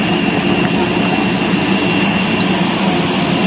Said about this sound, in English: It's noisy. It's an airport, of course. You're expecting it to be noisy. I'll turn the volume down a little bit because it's not critical that we really hear the jet noise on this video.